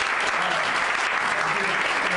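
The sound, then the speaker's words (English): A comedy club audience at Rooster Teeth Feathers applauds steadily, dense clapping at a constant loudness with no pauses, like a full audience cheering. “Round of applause for Rooster Teeth Feathers.”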